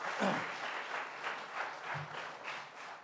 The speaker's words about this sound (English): This is the glue that holds our world together, and they deserve some applause here.